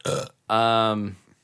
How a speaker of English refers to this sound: Gross. Mm-hmm. That's a Hennessy burp.